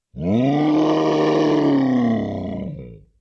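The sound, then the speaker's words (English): A single deep, sustained animal roar, loud, holding steady for about two seconds before tapering off into a rough, growling trail. “deep roar silenced the velis.”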